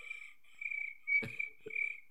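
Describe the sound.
A person imitates crickets with a steady, high-pitched trilling chirp, repeated in several close bursts, broken midway by a brief muffled thump; no words are spoken.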